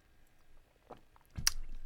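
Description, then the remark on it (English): Quiet sounds of a person drinking water: a soft wet gulp, then a fuller swallow about half a second later, with no talking. “And I'm going to drink this water now.”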